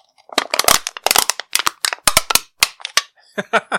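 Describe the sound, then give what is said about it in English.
A metal can being crumpled as a sound effect for the crumpling of a submarine, a series of sharp, irregular crackling and crunching bursts for several seconds, with brief pauses between squeezes and a faint voice-like sound near the end. “The sound effect for the crumpling of the submarine.”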